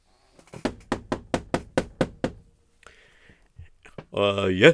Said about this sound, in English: And suddenly one day there was a knock on his door.